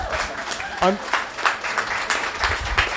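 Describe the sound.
An audience at Look Mum No Hands applauds a guest in a steady, dense patter of many hands for about three seconds, with a short vocal cheer rising briefly near the start and murmuring voices underneath.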